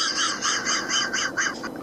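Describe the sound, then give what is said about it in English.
A loud, raspy burp, held in after a spaghetti dinner, is forced out through the nose, breaking into a quick run of about six croaking pulses with a harsh, honking, caw-like tone. It lasts under two seconds with no talking. “There was a lot of power in that burp, man.”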